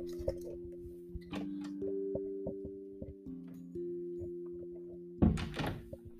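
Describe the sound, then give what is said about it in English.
A door is opened to let a cat outside, with a single loud thunk and rattle near the end, after a stretch of steady low hum dotted with faint clicks; no one speaks. “Alright, I have no idea how that's gonna pick up on the mic, but I just opened my door to let my cat out.”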